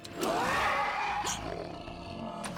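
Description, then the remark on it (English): A person imitates a loud, drawn-out triumphant roar: one rough, growling burst swelling for about a second, then trailing off into quieter breathy noise. “It's just like the whole thing is like he picks it up and like gives this triumphant roar.”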